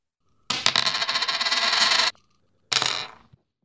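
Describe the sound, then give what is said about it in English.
A penny is tossed to pick the winner of a Steelers versus Buccaneers football game and lands with a bright metallic ring that spins for over a second, then a shorter clinking rattle as it settles, clear with no voices. “And early on, the Penny is cheating off of your paper, going with the Steelers.”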